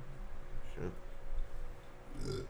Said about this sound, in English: my bad. Sorry for that burp. You already know how it is. I had a lot of water and I smoked. Smoke a lot of weed.